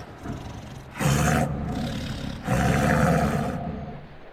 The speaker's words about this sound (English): And then the crew hears it. A low growl.